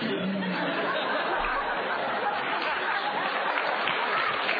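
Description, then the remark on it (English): Dense, continuous clapping from many hands fills the whole stretch, steady in loudness with no pauses, with a faint murmur of crowd voices mixed underneath; Rudy is clapping and smiling while shaking the hand of a young child. “So Rudy's clapping, he's smiling, shaking the hand of the young child.”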